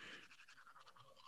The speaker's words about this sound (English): Thank God. And now, oh God, he's brushing his teeth.